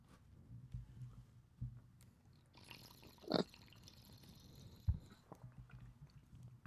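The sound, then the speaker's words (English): Someone drinks water during a break: soft sips and liquid sloshing, with a couple of sharper splashy swallows scattered across a few seconds and no talking. “Water break”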